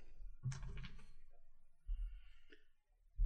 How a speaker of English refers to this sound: He rolls in absolute chaos over here. Like, he has all these dice and he just rolls into the middle of them so they all get mixed in together, and I can't.